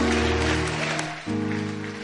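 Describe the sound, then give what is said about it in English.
A crowd claps steadily in a dense, continuous patter, mixed with sustained keyboard or organ chords that shift to a new chord partway through. “If you are clapping, clap very well.”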